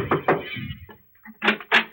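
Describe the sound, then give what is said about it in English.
Knocks on the wooden door of a big house at night, a pair of quick raps followed after a short pause by two more, moderately loud. “I knocked at the door.”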